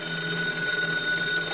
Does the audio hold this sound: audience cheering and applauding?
no